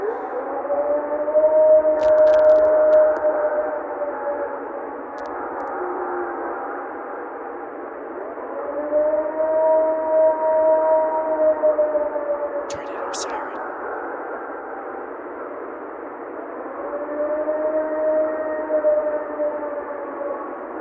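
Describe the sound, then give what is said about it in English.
Three long, wavering howls rise and fall in pitch with a rich harmonic tone, each lasting several seconds, heard alone over a thin, muffled, band-limited recording hiss. This is the famous Ohio Howl, an unexplained howl recorded by Matt Moneymaker in 1994. “That is the famous Ohio Howl, recorded by Matt Moneymaker in 1994.”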